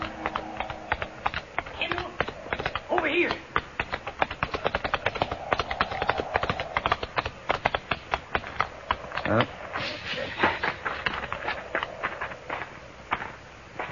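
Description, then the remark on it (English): Horse hooves gallop in a fast, steady rhythm of sharp thuds that carry on without a break for the whole stretch, fairly loud and busy. “horse easily outdistanced mine, and by the time I reached the first slopes, the cowboy had disappeared into a canyon.”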